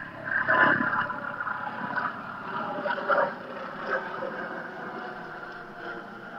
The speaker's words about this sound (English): Right. I'm just going to let this helicopter go.